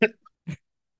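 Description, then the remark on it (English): A person coughing while trying to mute their microphone: two short, harsh coughs, a louder, rasping burst followed half a second later by a softer one, with silence between and after. No talking. “I was trying to mute myself as I coughed, and I was coughing, and my mouse was like moving all over the place as I was doing that.”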